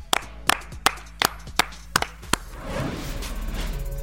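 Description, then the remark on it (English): Seven sharp, loud hand claps in a steady, even rhythm about half a second apart, followed by a softer, continuous wash of noise once the clapping stops. “Clap it up.”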